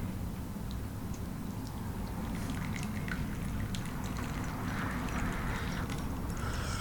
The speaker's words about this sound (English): Cause I want a space in time too. I want it to be longer time, and the water can keep going in and keep going in and keep putting energy into my tea. You don't want to pour too fast.